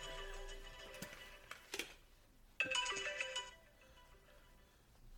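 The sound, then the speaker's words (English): An alarm clock rings with a bright, electronic, ringtone-like chime. Tonal bursts repeat in bands around the upper mids, fade, then return louder for a second stretch before trailing off. No one speaks. “That is my last alarm clock.”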